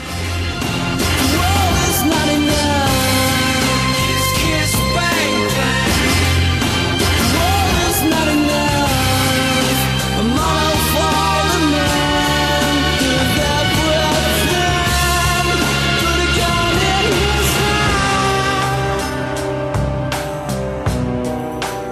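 A British post-Britpop rock song plays loud and steady throughout, full band with a driving drum beat and layered melodic parts, no one talking over it.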